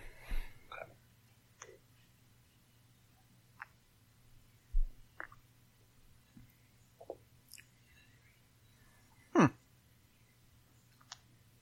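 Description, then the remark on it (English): Quiet sipping and tasting noises as a first sip of whiskey is taken: scattered soft lip smacks and mouth clicks with one sharper gulp-like sound near the end, over a low steady hum and no talking. “Well, that was an interesting first sip.”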